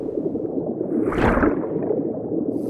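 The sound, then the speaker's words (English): Muffled underwater bubbling and gurgling, a steady low churn with a brief fuller swell of bubbles in the middle, no voices present. “Under the sea.”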